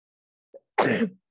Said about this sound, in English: Yeah, hold on, I need to sneeze, probably.